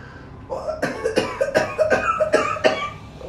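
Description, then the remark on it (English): A loud coughing fit: six or seven harsh coughs in quick, steady succession, each a rough burst of breath, with no talking. “Cover your mouth when you cough.”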